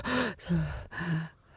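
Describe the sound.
A voice imitates frightened hyperventilating, three quick, loud, breathy gasps in a rapid rhythm, on their own with no talking.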